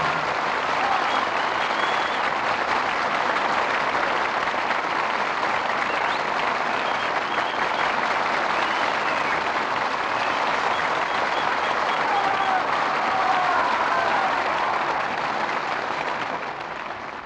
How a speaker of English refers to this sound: who returned to the footlights in response to your applause.